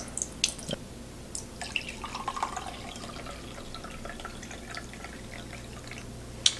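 Freshly brewed cold brew coffee, brewed for 15 minutes, pours and drips into a container, with scattered splashy drops and trickling over a steady low background hum; no one speaks.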